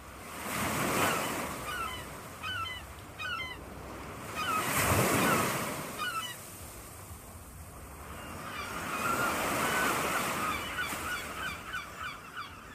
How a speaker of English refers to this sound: So without further ado, we're going to hear some seagulls,